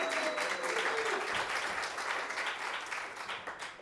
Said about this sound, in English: All right. Let's clap it up for Alderman Perez.